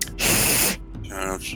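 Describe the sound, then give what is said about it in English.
A person makes a loud, sustained hissing sound through their teeth for about half a second, followed by a softer, breathier hiss with a faint voiced tone. “Are you hissing?”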